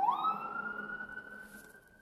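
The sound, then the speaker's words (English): A Kelowna Fire Department fire truck siren wails, sweeping upward into a steady, piercing high tone that slowly fades over two seconds, with no voices over it. “I'm going to take a coffee break because we got a fire truck coming through here.”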